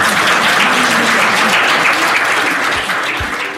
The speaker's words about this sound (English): So I'd like to have a round of applause for our panellists.